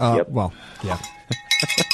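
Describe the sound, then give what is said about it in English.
After a few spoken words, a small bell rings with bright, metallic strikes, several quick dings whose high tones linger and overlap as they fade. “Do you have the bell?”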